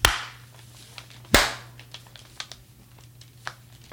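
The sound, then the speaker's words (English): A sharp single hand clap, made on a count of one, two, three, cracks out loud and crisp, followed by a few faint scattered clicks over a steady low hum, with no talking. “You want to do a clap or something?”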